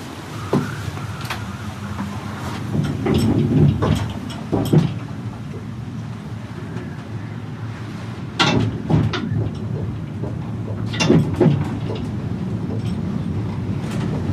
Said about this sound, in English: The cable car rocks back and forth, swaying 50 meters over the ocean